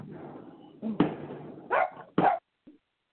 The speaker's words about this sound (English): And the dog chimes in.